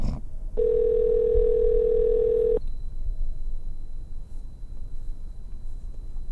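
A single steady electronic ringing tone from an outgoing phone call that goes unanswered sounds for about two seconds, then cuts off, leaving a quiet low hiss with no one speaking.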